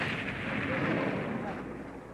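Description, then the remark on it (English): A sustained, rumbling roar from a miniature model explosion effect, triggered by a primitive mechanism to depict an attack by planes on the surface of a space station model, a dense wash of blast noise that holds steady at a fairly loud level for a couple of seconds. “To effect attacks on the model by the rebel planes, explosions are sometimes triggered by primitive mechanisms.”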